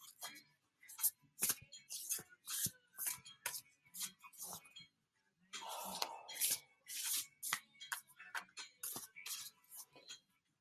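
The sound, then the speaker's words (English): Crisp card shuffling: repeated riffles and rapid papery flicks in quick bursts, with a brief pause midway before the shuffling resumes, fairly quiet overall and no talking. “I'm being reminded as I'm shuffling too”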